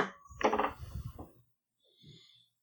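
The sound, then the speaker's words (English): Two dice clatter across a tabletop for a persuasion roll in a quick burst of hard little knocks that trail off, landing on a four and a five, followed a moment later by a brief, softer rattle. “Give me a persuasion roll.”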